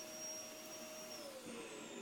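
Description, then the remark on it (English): A vacuum cleaner runs steadily, a loud continuous motor roar with a high, thin whine on top and a slight pitch drift near the end. No voices. “Although, I can be rather clumsy and drop the Hoover sometimes.”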